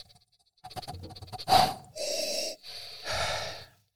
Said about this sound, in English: Let's give this a smell, a sniff.